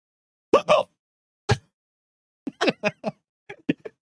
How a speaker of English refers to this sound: Can you make it through the rest of this without hiccuping?